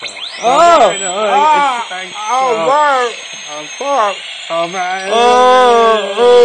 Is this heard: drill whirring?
yes